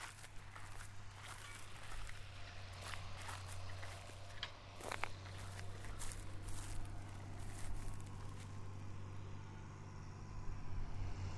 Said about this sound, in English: So this was a crop of wheat which has been combined, and years ago they used to burn the stubble, but now that's not the ticket, so it's being ploughed in. You can probably just start to hear the tractor in the distance.